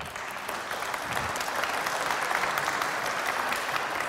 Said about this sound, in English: Should we give him a round of applause?